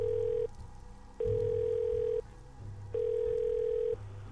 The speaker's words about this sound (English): The dial tone came over the receiver as Mike panicked.